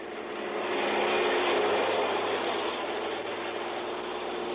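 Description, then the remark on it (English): A small propeller ferry plane to Sarasota drones steadily in flight, a broad, continuous engine roar that swells slightly and then holds loud, with no voices. “Then a ferry plane to Sarasota”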